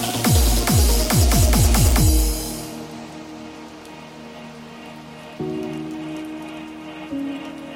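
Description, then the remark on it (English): Heavy rain hammers loudly on an uninsulated tin roof in New Zealand for a few seconds with deep booming pulses, then drops to a softer, steady patter over low sustained hums. “This is the rain falling on the tin roof you used to grow up, especially here in New Zealand.”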